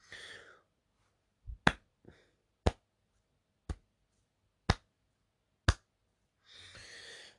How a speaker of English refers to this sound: Slow clap for the referee that has now decided that they want some authority and they actually want to do the job.